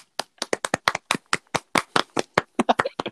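A few people clap their hands in a quick, slightly uneven patter of about twenty sharp claps over three seconds, moderately loud, with no one talking.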